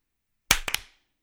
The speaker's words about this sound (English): I heard three distinct claps, including mine. Too. So. Really? I heard mine and then two others, which is generally good because that's lag, but we'll see.